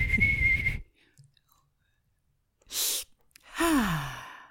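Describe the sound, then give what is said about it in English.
A person imitates a tea kettle: a steady high whistle, then a sharp breathy slurp like sipping tea, then a sighing 'ah' sliding downward. Fairly loud, with a silent pause in the middle. “So the first time you sipped, it whistled, and then you were like, ah?”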